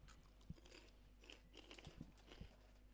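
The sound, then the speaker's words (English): Crunchy munching on crisps, with sharp bites and crackles landing every half second or so over a steady low hum, irregular and fairly quiet, with no talking. “People listening to this podcast, all they're going to hear is just munching.”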